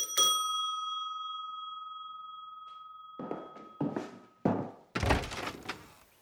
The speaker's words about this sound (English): After they were through raking and bagging the leaves, Lizzie and Joey went to the front door of the house and rang the doorbell.